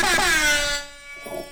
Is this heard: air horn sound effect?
yes